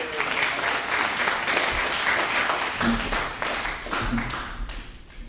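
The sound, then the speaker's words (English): A crowd applauds steadily as a speaker is welcomed up, a dense wash of many hands clapping at an even loudness for several seconds, with a few faint low thumps underneath. “Well, thank you for the applause.”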